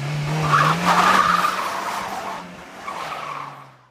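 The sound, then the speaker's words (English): An Impala's engine revs hard as its tires squeal loudly against the pavement, the screech rising and holding for a few seconds before the car roars away out of a driveway and the sound fades out. “Spurlock walks out the door as Barbara and Don watch him get into his Impala and speed out of the driveway.”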